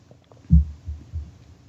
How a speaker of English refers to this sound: I think intermittently cats purring as well. Oh, yeah, there you go. Yeah. There you go. It's kind of the white noise of animals, sure.